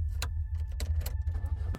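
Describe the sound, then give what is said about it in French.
A car being started with keys at around 2:30 or 3 a.m. to drive back to the beach: a few sharp metallic clicks and jingles over a steady, loud low engine rumble, with no voices. “Il devait être 2h30 ou 3h du matin quand j'ai décidé de prendre la voiture pour retourner à la plage.”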